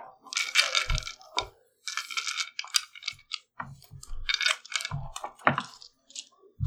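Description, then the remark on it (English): Dice clatter and rattle against a hard tabletop in several quick bursts, with sharp clicks and tumbling knocks, no voices present. “It's just fun to roll these dice.”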